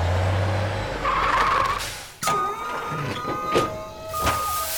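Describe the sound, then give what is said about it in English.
A full truck unloads collected crops into a barn: a low engine rumble, then a sudden mechanical whir with tonal whines and a few clunks, steady, with no voices. “Oops, truck's full. Where do you want me to unload? Okay, the barn.”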